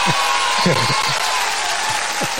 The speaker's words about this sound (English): All right. Congratulations there, sir. Give you another round of applause for that.